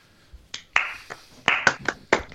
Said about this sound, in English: Stop the clapping. This is professional.